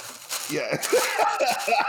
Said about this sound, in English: Starting off with a palpable energy there. Always a great sign when you can hear somebody rustling chips in the first 20 seconds of the pod.